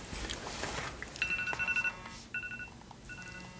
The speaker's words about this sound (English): Sorry. Do you have that on during the movie? No, fortunately not. Good. Yeah. Was that a phone call or an alarm? It was an alarm.